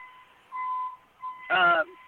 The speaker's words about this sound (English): That's not me. The truck backing up. Oh, I was, yeah. Are you there? Yeah, we're here. It's kind of loud. He'll get backed out in a minute.